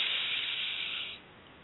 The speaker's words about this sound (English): Again, deep breath in and release.